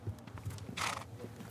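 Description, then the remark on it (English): A recently rescued foal, one of three saved from a trailer headed for slaughter, shifts about, its hooves clip-clopping softly in an uneven rhythm, with a brief breathy burst partway through. No one speaks. “one of three foals that Mandy recently rescued”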